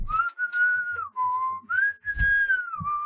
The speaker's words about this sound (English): I whistle while we're going down.